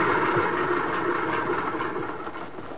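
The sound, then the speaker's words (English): A plane's engine drones steadily as the plane sets down for a landing and skids a bit, a dense rumbling roar with a faint rhythmic throb, fairly loud and easing slightly toward the end, with no voices. “The plane's skidding a bit, but he's got her straightened out.”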